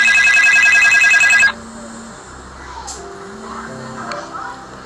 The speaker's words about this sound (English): please excuse the ringing